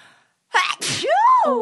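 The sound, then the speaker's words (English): A single loud sneeze: a sharp breathy burst of air followed by a drawn-out voiced cry that rises and then falls away. “Oh, I have to sneeze.”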